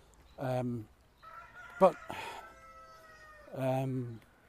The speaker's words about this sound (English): can you hear the birds? There's a peacock and a chicken and everything here.